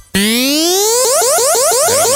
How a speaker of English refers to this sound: Why is that a laser beam?